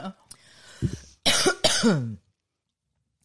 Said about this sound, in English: Coffee cough.